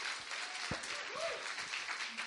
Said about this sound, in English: Thank you for clapping.